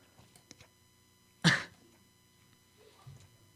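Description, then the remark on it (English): A single sharp, breathy rush of air, a quick forceful breath lasting a fraction of a second, followed by a much fainter, softer breath a moment later, with quiet pauses around them. “That's me breathing in so and out.”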